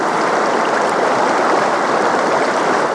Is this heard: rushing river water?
yes